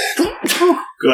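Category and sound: human body sound, sneeze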